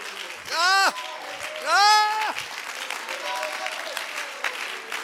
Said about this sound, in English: Again, clap in excitement. Just clap in excitement over what you feel.